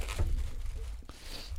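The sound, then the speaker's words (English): Plastic toilet paper packaging crinkles and rustles as it is opened, a soft continuous crackle with a sharper snap about two-thirds through and a low rumble underneath. “Let me open this up real quick.”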